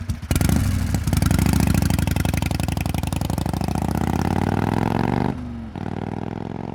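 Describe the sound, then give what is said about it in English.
A huge motorcycle's loud engine roars and rattles steadily as it rides off into the night, its pitch climbing as it accelerates, then briefly dropping as it shifts gear before pulling onward. No voices. “He climbs onto his huge motorcycle and disappears into the night.”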